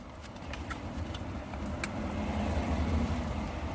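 Steady low rumble of road and engine noise inside a moving car, constant, with a few faint clicks and rattles over the top and no one talking.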